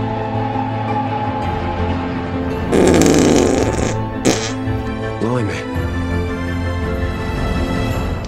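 A loud, raspy fart blares for about a second, standing out over a steady hum of background sound, followed by a quick smaller sputter.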